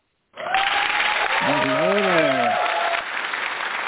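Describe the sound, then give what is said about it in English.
An audience breaks into loud, sustained applause welcoming a new partner, starting abruptly and continuing steadily, with a voice briefly audible over the clapping midway through. “Audience, big round of applause for our new partner,”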